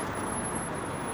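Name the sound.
road traffic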